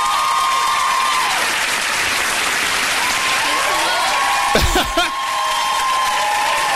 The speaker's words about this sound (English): The Tyra Banks applause.